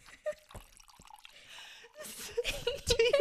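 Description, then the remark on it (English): Spilled liquid drips and splatters, starting with a few scattered drops, then building into a quicker, louder run of drips and small splashes. “Oh man, I just spilled this shit.”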